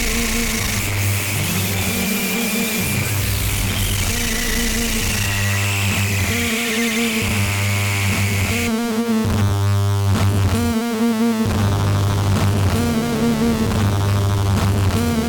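Harsh noise music blares without pause: a dense, loud wall of grinding, buzzing distortion with pulsing low drones and a sudden shift to a darker, choppier texture midway. No one speaks.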